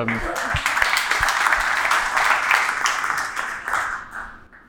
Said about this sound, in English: I want to clap for that. That was amazing.